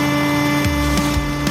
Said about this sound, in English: Wow, that was a... Those have like the bang snaps. I haven't smelled that like bang cap smell in a long time. Yeah, like the red. See, it smells like cap guns.